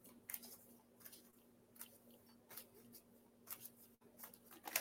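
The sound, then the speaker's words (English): A deck of cards being shuffled for a card reading, a series of soft papery riffles and slaps coming in irregular bursts over a faint steady hum, with no talking. “Just shuffling.”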